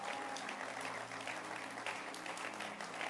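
An audience in a church claps for Bishop Rory Ayi and his wife, a dense, continuous patter of many hands with no clear pauses, loud and sustained over a low background hum.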